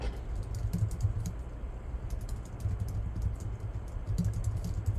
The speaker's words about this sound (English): I'm just typing in on Google to see what comes up whenever I type in Ohio BMX riders